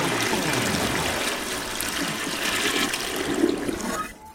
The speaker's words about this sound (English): Insert the sound of Flushy the Toilet. Flush, flush, flush.